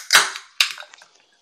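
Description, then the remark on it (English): A beer can is cracked open for someone's first beer of the night: a sharp metallic snap, then a second pop followed by a brief fizzing hiss that quickly fades. No one speaks. “Oh, I was just about to pour my first one.”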